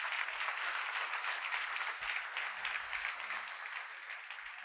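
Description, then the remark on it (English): A church audience claps their hands in praise of the Lord in sustained, dense applause at a steady loudness for several seconds, with no voices standing out above the clapping. “Come on, give the Lord a hand clap of praise for that.”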